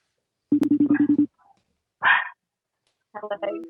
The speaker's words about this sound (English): Hello. Stop. The dogs are barking. Why are you? Nobody wants to hear the dogs bark. Well, I can't get mine to act right.